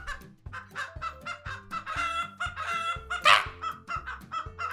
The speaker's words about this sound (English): The cauldron cracks, and you don't get splashed with anything, but a bit of it catches one of the tables, and suddenly it bursts into a bunch of chickens that start clucking around.